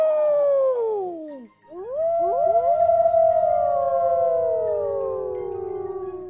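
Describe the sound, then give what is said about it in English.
Several voices howl together in long, wavering wolf-like cries, imitating werewolves. One howl slides downward and breaks off, then a chorus of overlapping howls rises, holds loudly, and slowly falls away. “No one stops a howl. I want to howl right now!”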